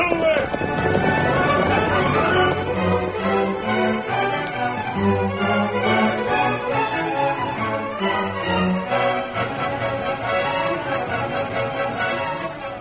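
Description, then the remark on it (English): Galloping horses pound along in a rapid, steady rhythm beneath loud, dramatic orchestral music, the hoofbeats continuing throughout in a hurried chase: Pete Madden's gang on horseback pursuing the Lone Ranger on his horse, Silver. “The members of Pete Madden's gang pursuing the Lone Ranger on his mighty horse, Silver.”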